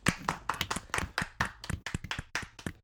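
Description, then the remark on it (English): Quick, uneven hand clapping from a few people applauding Skips crisps named winner of a crisps contest, sharp bright slaps overlapping in a loose rhythm for about three seconds, with no one talking. “Applause for Skips.”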